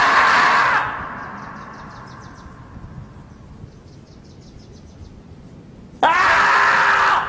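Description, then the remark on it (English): Two loud, harsh screeching yells dubbed over a video of a marmot standing and opening its mouth, one at the start and one near the end, separated by several seconds of quiet with faint chirping insects in the background. “it opens its mouth, and they always dub over it, so people dub over it with it yelling.”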